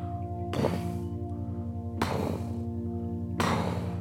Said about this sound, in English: Rex presses a button in his hand, and you hear huge footsteps approaching from either side.